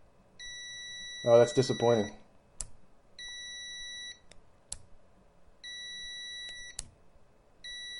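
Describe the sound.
A multimeter's continuity buzzer, tested by clicking the probes together, sounds a steady, high-pitched electronic beep in several sustained bursts of about a second or more, separated by sharp clicks, with a man speaking briefly over the first; each beep starts a second or so late.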